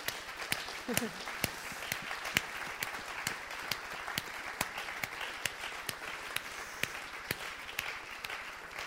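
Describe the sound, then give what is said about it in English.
An audience applauds the women who are standing, a steady dense wash of many hands clapping at once, with a few sharper claps standing out and murmuring voices faintly underneath. “And I just wondered if we could applaud the women that are standing.”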